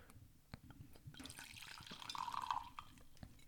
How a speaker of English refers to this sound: The last few episodes you've been doing some really healthy pours. That's still a healthy pour, too.